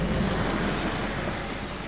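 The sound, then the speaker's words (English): A stormy sea roars steadily at a dock, with crashing waves and gusting wind blending into a thick, continuous rush of noise and no voices. “You cannot mean to traverse the sea on this rickety boat. In this storm...”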